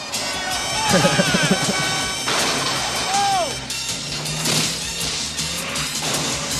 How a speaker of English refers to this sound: Is it supposed to be because Hogan's like causing that? Yeah, he's kicking the inside of the car so bad it's making the whole car swerve out like that.